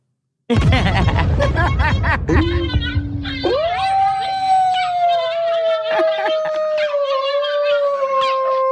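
A played dog-howl sound effect: a dog lets out a long, loud howl that holds a steady, slowly falling pitch for several seconds, preceded by a burst of rough barking-like noise at the start.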